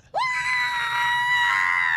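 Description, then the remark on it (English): A person imitates a goat with one loud, sustained, high-pitched bleat that swoops up at the start and then holds a steady, strained tone for nearly two seconds. “That's a goat. That's a goat. I mean, that was pretty good.”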